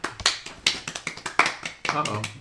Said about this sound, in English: Uh-oh. It felt right for clapping. Yeah, it did feel right.